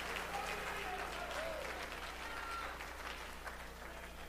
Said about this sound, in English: Somebody clap your hands to the Lord one more time.